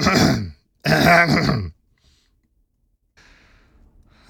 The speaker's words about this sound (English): And I need to clear my throat. Let me put a marker here so I can do a little edit.